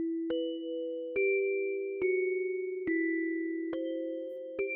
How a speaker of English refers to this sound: Why did you choose some of the sounds, especially in the higher end? Like some of the bell sound. So it actually kind of started with that bell sound.